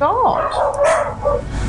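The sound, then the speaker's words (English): A dog lets out a few sharp, yelping barks in quick succession, loud, with people's voices murmuring underneath. “God, see, the dog's still going.”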